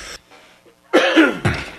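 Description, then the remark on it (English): A loud cough in two harsh bursts, preceded by a short throaty sound and a quiet pause; no talking. “Coughing.”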